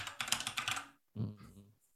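Rapid clattering keystrokes on a computer keyboard, fairly loud, in a quick flurry that pauses briefly before another short burst of typing.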